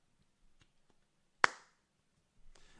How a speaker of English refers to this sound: You get a golf clap.